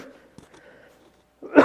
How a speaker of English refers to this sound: I'm going to cough here.